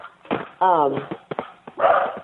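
A dog barks a few times in short, muffled bursts, including one drawn-out, whiny yelp that slides downward in pitch, all sounding thin and band-limited as if over a phone line.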